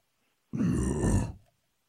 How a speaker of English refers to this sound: and then the growl happened when they were outside. Oh, no, no. Okay, so I'm talking about the goats are making noise, and you slide the door. Oh. And you're like, hey, guys. And it literally sounds like it's over your shoulder.